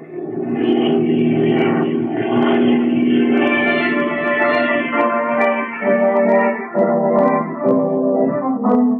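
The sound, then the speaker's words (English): A seaplane's propeller engine drones loudly and steadily, its pitch wavering slightly as it lands on a lake and taxis, with no voices. “Land in the lake and taxi up as close as possible to the place that fellow came down.”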